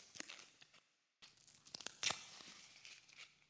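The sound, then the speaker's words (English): A Payday candy bar wrapper is torn open in quick, crinkly rips: a burst of crackling, a short pause, then more sharp tearing and rustling plastic that trails off softly. No one speaks. “I think we found something. Payday.”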